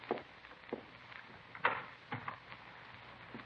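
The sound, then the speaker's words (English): A bedroom door opens quietly, with a few soft clunks and light rattles spread over a few seconds, the firmest knock near the middle, with no one speaking. “Where's that door lead over here? Bedroom. All right, if I take a look?”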